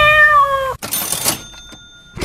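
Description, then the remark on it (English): A cat gives a single clear meow, then a cash register goes cha-ching with a mechanical clatter and a bright bell that rings on and fades out. “So that was a meow and a cash register.”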